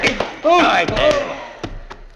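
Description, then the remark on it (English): A pistol-whip blow lands on a man: several short, sharp thuds, with a drawn-out pained groan between them and a final couple of quieter knocks. “Gun whip him”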